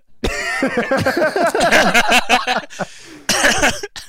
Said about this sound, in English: Oh, I gotta clear my throat. Hold on a second.